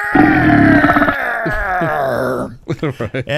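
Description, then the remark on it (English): A voice imitates an enormous burp: a loud, low, rasping croak drawn out for over two seconds and sagging in pitch, then a few quick spoken syllables. “He says, all of a sudden, behind him, there's this enormous burp.”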